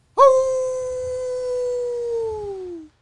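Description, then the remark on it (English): A person imitates a wolf howl with one long, loud, steady wail whose pitch sags gradually toward the end, lasting close to three seconds with nothing else alongside it. “Is a wolf a jungle animal, actually?”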